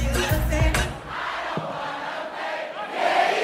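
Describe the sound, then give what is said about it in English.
A club crowd in Atlanta roars and cheers as the DJ plays a dancehall section, in a dense, sustained wash of voices, with a few sharp whoops and low thumps early on before the noise settles into a steady din. “The crowd loves it.”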